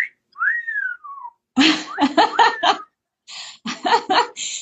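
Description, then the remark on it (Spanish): A person whistles a single wolf whistle, a catcall common in Mexico, a quick rising note sliding down again, clear, followed by several bursts of breathy laughter. “Ah, se ha ido progresando culturalmente de que está mal, es porque es una especie de acoso, pero es muy normal el silbido que va más o menos así.”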